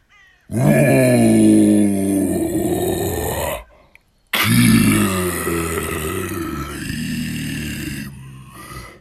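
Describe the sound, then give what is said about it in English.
Two long, loud, guttural roars from the war chief of an orc horde as he points toward an intruder, each lasting a few seconds and separated by a brief pause, deep and growling with a rough, monstrous vocal quality. “And upon spying my uncle, pointed towards him and roared.”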